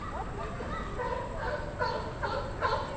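Seals barking at the Central Park Zoo, a loose series of four or five short honking barks in the second half, rising over steady outdoor background noise.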